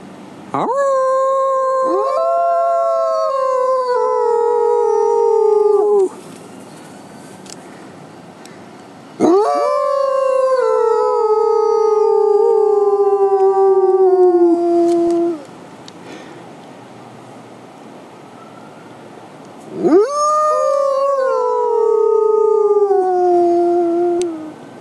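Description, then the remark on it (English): A high-content wolfdog named Grey Wind howls three times, each a long, loud, sustained wail that slowly falls in pitch, with short silent pauses between. It is clear, with no talking. “I love the wolf dog wind up there too.”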